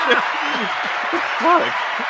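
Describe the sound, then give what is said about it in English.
A steady wash of clapping hands runs throughout, dense and continuous rather than individual claps, with voices murmuring and calling out over it. “Give us a clap.”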